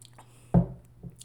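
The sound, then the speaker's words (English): A single wet sip or gulp from a drink, short and fairly loud, followed by a softer swallow-like sound a moment later, with no talking. “I'm going to take a sip here, guys.”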